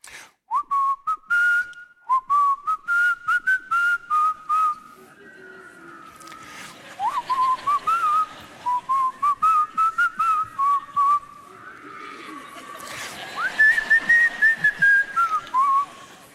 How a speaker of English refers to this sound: Some of you'll recognize it, especially if you grew up in like children's church. You feel free to whistle along if you recognize it, okay? So he whistles by me, and here's what he's whistling.